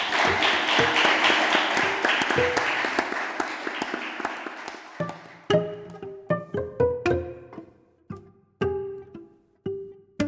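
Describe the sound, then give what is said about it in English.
A crowd applauds steadily and loudly for the debate candidates, Phil Scott and David Zuckerman, for about five seconds, the clapping thinning and fading away. Sparse, ringing musical notes then follow in short separated strikes. “And if we could have a round of applause, please, for the candidates.”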